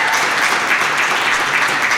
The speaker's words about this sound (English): Legacy, before I preach, can we clap our hands and honor our pastors today?